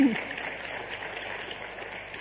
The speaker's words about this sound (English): Okay. Give him a clap.